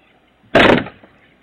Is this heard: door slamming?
yes